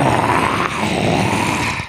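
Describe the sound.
A continuous, rough growl from an icy humanoid, part dog-like creature with a hyena's face, standing on its haunches and growling toward the listener, low and rumbling with a raspy, gritty texture, holding steady and loud for about two seconds before tapering off at the end.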